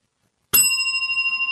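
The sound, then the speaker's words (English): A hand bell is struck once after a moment of silence, its bright metallic tone ringing on steadily and loud without fading. No voices are heard. “Did they hear my bell?”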